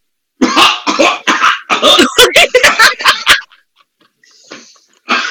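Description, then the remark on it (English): A loud fit of harsh, rapid coughing, a dozen or so hacking bursts in quick succession, then a brief quiet stretch before another rough cough starts at the end. “Why are you coughing and all that?”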